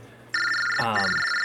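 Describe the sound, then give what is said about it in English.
A phone rings with a bright, steady electronic tone that starts abruptly and holds for over a second, fairly loud, with a short burst of voice overlapping midway. “Is that my phone or your phone?”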